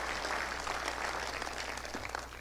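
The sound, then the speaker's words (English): An audience claps their hands together, a dense, steady wash of many overlapping claps that holds an even loudness throughout, with no voices over it and a faint low hum beneath. “Come on, clap your hands if you're receiving this right now.”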